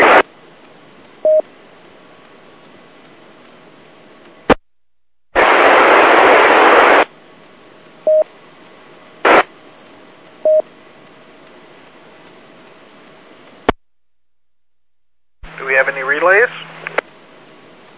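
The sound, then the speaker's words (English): Steady radio static hisses throughout, broken by a loud burst of noise, sharp clicks and short beeps. Near the end a faint, warbling transmission from a station trying to check into a radio net briefly pushes through the hiss. “I think I heard somebody trying. Can you give it one more try? Increase power, all you were static.”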